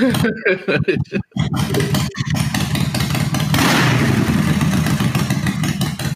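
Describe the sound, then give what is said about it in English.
A loud, rasping roar like a motorcycle engine grinding and scraping along, starting choppy and then holding steady and harsh for several seconds, dominant. “That sounded like a fucking car. Yeah. Scraping. Yeah. It sounded. Sounded like your bike.”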